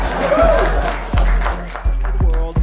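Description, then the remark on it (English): A live audience claps and cheers, a dense wash of crowd noise punctuated by sharp, scattered claps and whoops over a few seconds, loud. “You motherfuckers better clap for me.”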